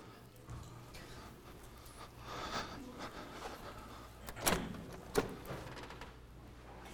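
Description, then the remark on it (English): A door is handled: soft shuffling and creaking, then two sharp clunks in quick succession as it swings open and is wedged in place by kicking down a little doorstop, no talking. “The door's kind of weird.”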